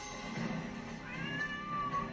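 A cat lets out a single drawn-out meow that rises and then slides down in pitch, clear over a steady low background hum, with no one talking.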